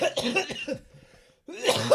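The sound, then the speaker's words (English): A voice acts out a dramatic coughing fit of a character suffocating in a plume of smoke: a burst of harsh, rapid coughs, a brief strained pause, then another loud round of hacking, unaccompanied. “He coughs.”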